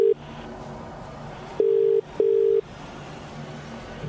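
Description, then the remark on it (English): A telephone ringback tone on an outgoing call made on behalf of the Uniting Schools Foundation: a steady, clear electronic tone in a double-burst pattern, two short pulses close together after a longer pause, over faint background hum. “It's ringing.”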